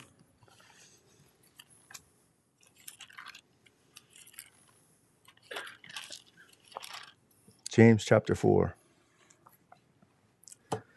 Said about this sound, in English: It's good to hear those pages rustling.